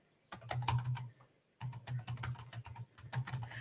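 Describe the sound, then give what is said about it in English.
Rapid typing on a computer keyboard: three bursts of quick clattering keystrokes separated by short pauses, with no voices. “I'm dealing with two different keyboards here, and the Austrian keyboard is different.”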